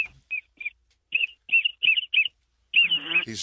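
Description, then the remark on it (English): A duck call whistle, blown live in a duck blind to call ducks while three sprig circle, gives a series of short, high, chirpy peeps in an uneven rhythm, about seven quick notes, then ends with a longer warbling trill. “He's just going to call ducks right now.”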